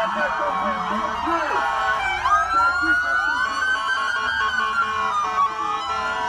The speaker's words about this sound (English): Now, the first responders in Newark, New Jersey, went outside Beth Israel Medical Center and blasting their sirens and cheered for health workers yesterday. This is what it sounds like.